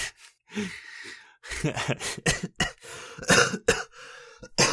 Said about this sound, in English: Excuse me while I cough my brains out. There, I'm prepared now.